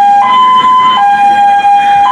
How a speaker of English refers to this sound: Yeah, as you can see, an ambulance is coming down. I should probably move to the side so I don't become a casualty of the ambulance coming down. And we'll just let that pass through.